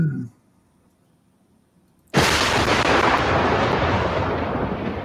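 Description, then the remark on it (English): A lightning-bolt thunder effect: after about two seconds of near silence, a sudden loud crack breaks into a dense, roaring rumble that holds strong until the end. “Wow, that's what y'all hear. That lightning bolt, y'all see it?”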